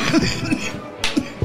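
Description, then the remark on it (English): A loud coughing fit: several rough, harsh coughs in quick succession, with one sharp, forceful hack partway through and no talking. “I was doing so good with the cough.”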